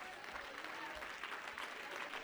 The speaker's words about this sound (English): Those of you whose homes flooded in 2016, I want you to stand up and clap your hands and shout to the Lord right now. Stand up and do it.